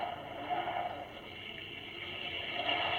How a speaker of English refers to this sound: Oh, the storm has broken at last. I say, listen to the rain.